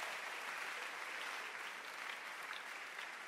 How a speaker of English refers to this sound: Let's clap our hands for her. She got a job last week. Clap your hands for her.